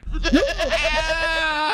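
A goat, held up by a person, lets out one long, quavering bleat, loud, with a wavering nasal tone that holds steady before breaking off abruptly.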